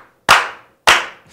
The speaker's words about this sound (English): May we please begin the show by slow clapping this king of comedy in?